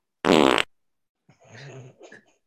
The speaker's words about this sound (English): I hit you with the fart number 2. Dude, I don't know what's in this beer. I don't know what's going on. Maybe it was the dinner I had.